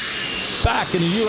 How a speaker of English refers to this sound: Oh, yeah. It's a jet flew overhead. Okay, was it really? Yeah.